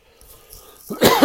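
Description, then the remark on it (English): A quiet stretch with faint low rumbling gives way to a sudden loud cough, a harsh burst followed by a second rasping hack, from a person with post-nasal drip after a cold. “See, I'm coughing now.”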